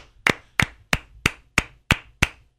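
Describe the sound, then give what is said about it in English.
Seven sharp, evenly spaced hand claps ring out in a steady rhythm, struck together in unison so each lands as one crisp snap, with no talking over them. “Let's give a round of applause for an Oscar-worthy performance”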